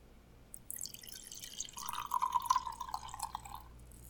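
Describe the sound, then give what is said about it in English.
Junmai Ginjo sake from Sawanoi is poured into a glass: a brief splashy start, then a steady gurgling trickle whose pitch rises slightly as the glass fills, lasting a few seconds with no talking. “I'm going to go ahead and open this up. Give it a pour.”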